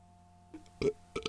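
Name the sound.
burp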